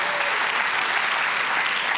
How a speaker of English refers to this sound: Don't just clap.